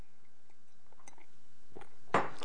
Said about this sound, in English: But what bothered me... I've got to have a sip of water here, hang on.